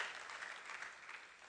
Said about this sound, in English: Clapping for the Holy Ghost. That's a good place to clap.